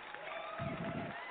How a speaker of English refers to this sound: They couldn't wait to clap for you.